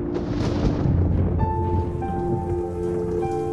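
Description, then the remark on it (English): A loud rumble of thunder from a lightning strike rolls through steady pouring rain, fading into a softer storm wash as faint sustained tones emerge underneath. No one speaks. “There's a lot of nice stuff that can do that. Like a really good lightning.”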